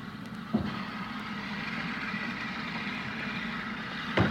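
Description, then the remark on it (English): A steam train approaching a station: its steady, low mechanical rumble holds at an even level throughout, broken by two sharp metallic knocks near the start and end. No one speaks. “Hurry up, I think I can hear a train coming.”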